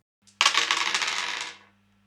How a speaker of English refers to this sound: roll the dice